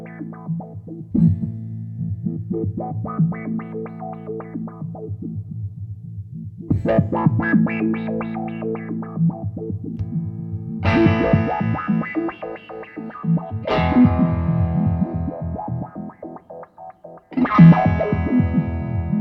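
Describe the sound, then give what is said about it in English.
An electric guitar played through an envelope filter flipped to high-pass sample-and-hold mode, its tone jumping in choppy, stepped sweeps across several loud strummed phrases with no talking. “So there I flipped it to the high pass, and it starts to be sample and hold.”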